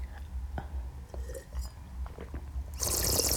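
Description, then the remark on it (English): Soft mouth noises of someone sipping and swallowing wine: small wet clicks and gulps over a low hum, ending in a louder airy slurp. “Oh, sorry, I've already swallowed it again.”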